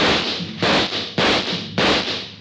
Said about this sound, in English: He took a full volley of shots from 3 police pistols square in the chest.